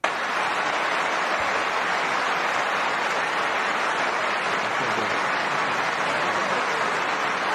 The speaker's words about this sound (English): And I would ask look at that sustained applause. I don't think I've ever heard applause that enduring before in a presidential debate.